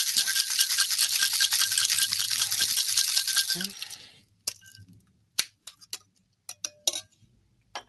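Crushed ice rattles hard and steadily inside a cocktail shaker for about four seconds while a cocktail made with Smith and Cross rum is briefly shaken, then stops, followed by a handful of sharp, irregular clicks and clinks.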